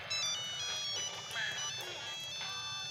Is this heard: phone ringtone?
yes